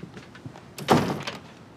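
A door swings shut with a single solid thud about halfway through, preceded by a brief sliding rustle and followed by a faint rattle, fairly loud.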